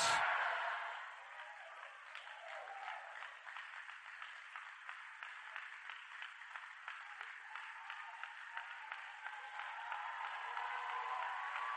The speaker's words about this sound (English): Your clapping is sick. Your shouting is low.